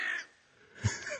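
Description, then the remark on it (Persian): A crow caws once in a harsh, raspy burst at the start, followed by quieter rustling and a few short knocks; no one speaks. “کلاغ دانا رو شنیدیم صداشو.”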